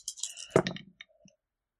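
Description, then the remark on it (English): Dice rolled for a covert check of difficulty 2 clatter and tumble across a hard tabletop in a quick burst of sharp clicks, with one louder knock midway before a few last small taps settle. Fairly quiet, no talking. “Dice. We're not using the white ones again.”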